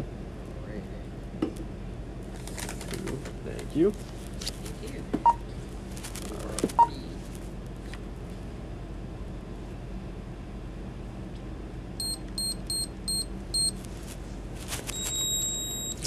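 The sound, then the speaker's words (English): A quick run of short electronic keypad beeps as a phone number is punched in at a checkout, followed by a longer confirming tone, over a noisy shop background with occasional clatter. “I'll put in my phone number.”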